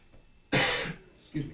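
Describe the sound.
A single sharp cough from a person getting over bronchitis bursts out loud after a moment of quiet, followed by a brief softer throaty trailing sound as a voice resumes faintly.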